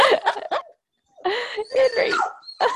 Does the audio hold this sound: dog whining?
yes